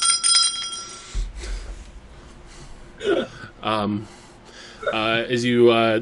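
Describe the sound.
A small bell above a door jingles brightly at the start, its ringing tones fading within a second, followed by soft vocal sounds and the low murmuring conversation of people eating dinner at tables.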